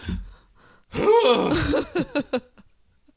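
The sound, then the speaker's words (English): A person imitates a sneeze with their voice: a loud, drawn-out, strained vocal build-up, then three short, sharp bursts in quick succession, and then quiet. “What is your new sneeze sound?”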